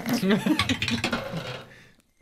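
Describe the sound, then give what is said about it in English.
Dice clatter across a hard tabletop during a tabletop role-playing game, in a quick burst of sharp clicks that thin out and settle after about two seconds, with faint voices murmuring underneath. “That dice hates you too.”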